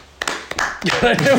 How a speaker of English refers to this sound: Why did you start clapping? I don't know. It was just like we didn't really. It was directed at the audience, but they're not really interactive, are they?